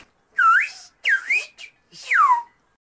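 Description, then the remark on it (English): Whistled English speech: three short, clear whistled phrases, "Nice to meet you", "How do you do?" and "Happy birthday to you", with swooping, rising and falling pitch glides like syllables of a spoken sentence, fairly loud with brief pauses between them. “Like, take a listen to these recordings of whistled English”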